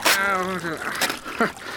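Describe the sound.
Water splashes in a few short, noisy bursts as a man is in a cold river, mixed with a rising and falling voiced cry.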